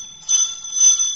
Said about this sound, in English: Hey, doorbell's ringing. I know the doorbell's ringing.